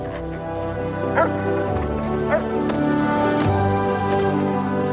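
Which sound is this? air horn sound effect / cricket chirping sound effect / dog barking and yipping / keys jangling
dog barking and yipping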